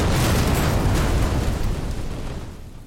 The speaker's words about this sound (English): Moments later, we see a woman being escorted to a waiting car when a manhole cover raises and a rocket launcher fires, destroying the car and the occupants.